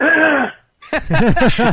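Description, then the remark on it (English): A voiced throat clearing, a brief pause, then a quick run of four or five loud, rough, rhythmic throaty bursts. “Just by clearing your throat gives you another accent.”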